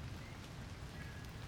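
Steady rain falls in a continuous, even hiss with soft patter underneath, fairly quiet and unbroken for the whole moment, with no voices present.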